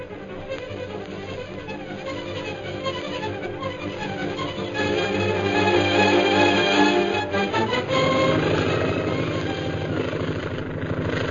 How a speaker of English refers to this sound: the plane piloted by Derek Bluger roars in from the hill